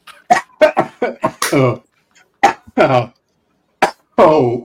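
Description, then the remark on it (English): A loud fit of harsh coughing after a big smoking hit: a rapid cluster of five or six coughs, a short pause, then a few more scattered hacking coughs. “Oh, cough to get off.”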